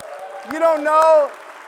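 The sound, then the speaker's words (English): An audience claps in a steady wash of applause while one voice lets out a long, rising cheer over it, with a couple of sharper claps standing out. The applause is for a man who is introduced as giving next week's Father's Day message. “You have no idea what you're clapping for, but next week he's going to be up here giving the message.”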